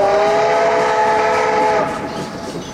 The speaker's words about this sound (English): Is this the only train of the day to Rhodesia? Of the day? There are only three trains a week. Mondays, Wednesdays, and Saturdays.